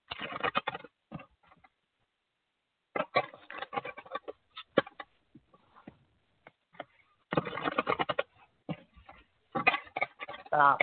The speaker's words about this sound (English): And what I'm going to do now is I'm going to shuffle and then you tell me when to stop shuffling.